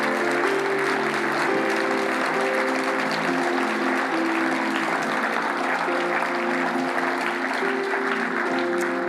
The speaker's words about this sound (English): For this country, let's show an honorable gift of our applause.